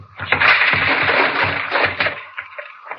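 A drawer full of blank keys is pulled open with a loud, rattling metallic scrape lasting about two seconds, its contents jangling, before the noise drops to a quieter clatter and faint shuffling.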